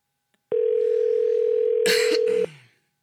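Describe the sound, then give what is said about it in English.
A single steady electronic ringback tone from a phone call waiting to be answered, lasting about two seconds, with a brief noisy rustle near its end before it cuts off. “You better pick up.”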